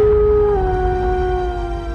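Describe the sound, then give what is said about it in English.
A wolf, Sigmund, lets out a long, loud, mournful howl of pain and grief, holding one wavering pitch that sags slightly downward, with a low rumbling background underneath the whole time. “Instead, he continued to howl in pain.”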